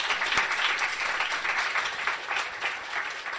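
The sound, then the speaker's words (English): An audience at a philosophy event claps steadily to welcome the next philosopher, a dense wash of many hands at fairly even loudness, sustained for a few seconds without any voices breaking through. “Please give a very, very big round of applause for the wonderful MM McCabe.”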